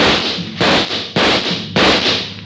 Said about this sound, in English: He took a full volley of shots from 3 police pistols square in the chest.